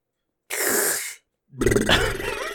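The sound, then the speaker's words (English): A voice imitates snoring with two loud, rasping breaths: a harsh, airy inhale followed after a short pause by a rougher, rattling snort, unaccompanied. “It starts snoring.”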